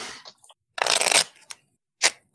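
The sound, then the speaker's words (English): A Foley sound of playing cards being shuffled: a brief papery rustle, then a dense, crackling riffle lasting about half a second, followed by a couple of quick, sharp card snaps. No voices. “Okay, let's shuffle them up.”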